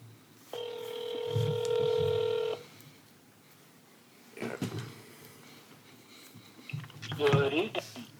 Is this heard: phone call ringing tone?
yes